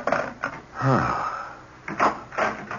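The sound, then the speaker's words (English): The back door of a house is opened and shut as someone comes in, with a brief creaking squeal in the middle and several knocking, rattling clunks of the latch and frame around it. “Oh, I thought I heard someone come in the back door.”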